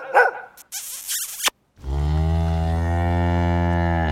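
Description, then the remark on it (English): A farm dog lets out a few quick, rough barks, then a cow answers with a long, loud, low moo that carries to the end. No one speaks. “When the dog barked up a fuss, the cows would get antsy.”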